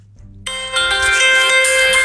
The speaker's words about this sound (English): Why every time I make a podcast, my phone is on loud and I get a phone call? Every time.